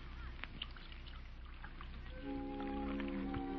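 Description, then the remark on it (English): Soft clinks and rustles, then a woman pours a steady stream of tea into a cup, its gentle ringing tone holding through the final second. No one speaks. “You know, there's something about a woman pouring tea.”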